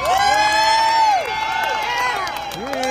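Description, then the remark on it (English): A crowd cheers and whoops over a steady bed of applause for Herschel and his family, with high rising and falling shouts standing out for a few seconds before the noise eases slightly and picks up again. “So how about a round of applause for Herschel and his family for putting up with all this trash?”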